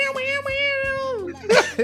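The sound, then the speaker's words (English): A voice imitates a wailing electric guitar solo, holding one bright, nasal note that wavers and then bends downward, ending in a short breathy burst. It is fairly loud. “Guitar solo comes in.”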